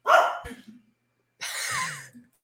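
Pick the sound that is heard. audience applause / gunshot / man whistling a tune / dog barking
dog barking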